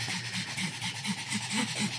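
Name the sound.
dog panting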